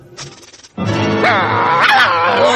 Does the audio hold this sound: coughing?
no